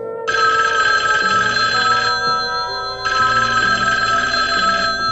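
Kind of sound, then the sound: signal or alarm, telephone ringing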